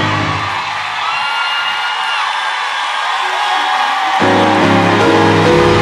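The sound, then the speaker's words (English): A loud audience cheers and whoops together, making noise in praise of God, in a dense, continuous roar, with scattered shouts rising above it and a fuller, deeper swell of sound near the end. “How do I get ready, I praise him. I make noise before the curtain comes up.”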